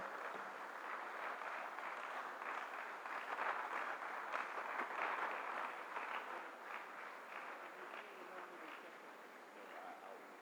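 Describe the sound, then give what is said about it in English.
An audience at a men's ministry gathering claps steadily for about ten seconds to welcome a guest speaker, a dense wash of many hands that swells slightly in the middle and then eases off toward the end, with no voices over it. “And with a clap offering, let's welcome our guest,”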